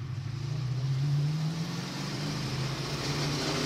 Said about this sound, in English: So we're accelerating. The engine is getting much higher.